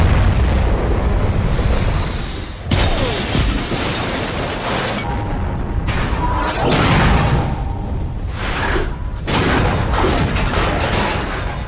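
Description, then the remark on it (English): A massive nuclear bomb blast from a film scene roars for several seconds, a deep, sustained rumble layered with rushing, whooshing debris and crackling bursts, loud with no voices. “It is a suspension beyond belief and into science fiction to think that somebody can survive a nuclear holocaust because of a fridge.”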